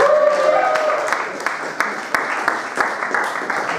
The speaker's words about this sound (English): Thank you. You can go. Give him a big cheer.